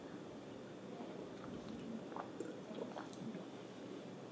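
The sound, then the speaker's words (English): Someone quietly drinks water, with soft wet gulping and a few small mouth clicks over a low, steady background hiss. No one speaks. “Let me drink some water”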